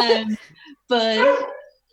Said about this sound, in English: But sorry, that's the other dog. Don't worry. Partner coming home. Oh no, it wouldn't be the podcast without someone's dog kicking off in the background. So he'll stop in a second.